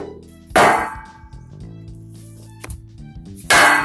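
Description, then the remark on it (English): Two bright metallic clangs as a metal chair is lightly dinged against a metal pole, one at the start and another near the end, each ringing out with a shimmering, resonant tail; a faint tick sounds in between. “We'll be taking the metal chair, and slightly dinging it upon a metal pole.”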